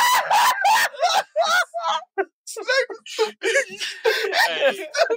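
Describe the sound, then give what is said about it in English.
A man lets out a string of exaggerated, high-pitched screams and yelps in mock fright, loud, coming in short choppy bursts with brief gaps between them. “Y'all ever heard me scream like a bitch?”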